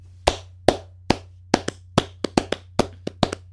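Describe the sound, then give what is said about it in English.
A dozen or so sharp hand claps, loud and crisp, starting evenly spaced then quickening into an uneven patter, over a steady low hum with no voices. “And we're clapping for you.”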